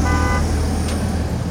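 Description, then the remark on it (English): A car horn toots briefly over a steady low rumble of city traffic, then the engine and road noise carry on alone, fairly loud. “Sounds of the country, screen doors and insects and nature, giving way to traffic and honking.”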